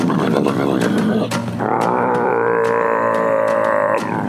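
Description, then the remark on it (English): A voice imitates a loud, deep, rumbling fart: a low, gravelly growl that shifts about a second and a half in, then holds as a steady, buzzing drone before cutting off. “It sounded like, you know, like a deep roar kind of like thing.”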